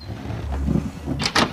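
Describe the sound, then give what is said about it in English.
A door of a cricket pavilion is unlocked and opened: a low, steady rumble gives way to two quick, sharp mechanical clicks at the end, like a lock turning and a latch releasing. No one speaks. “Lock the door in case the aliens drop in.”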